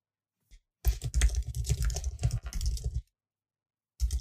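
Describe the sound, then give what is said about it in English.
Rapid, loud typing on a computer keyboard in a dense burst of clattering keystrokes lasting about two seconds, then silence before a few more keys start up. “I'm clickety-clacking loud so they have some ASMR.”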